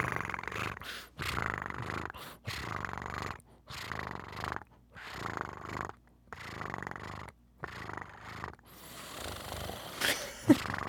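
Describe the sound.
A person imitating a cat makes a rough, rumbling purr with their voice, repeated in bursts with short pauses between, ending in a brief breathy rustle.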